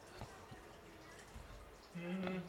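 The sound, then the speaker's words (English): Faint, irregular drips of water against a low background hiss, a few soft taps spaced apart, with a muffled voice-like hum rising near the end. “Hear the water that is not someone pissing.”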